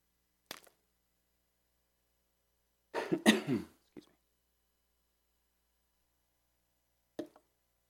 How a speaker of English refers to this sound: Get a cough drop ready so you don't have to hear me coughing.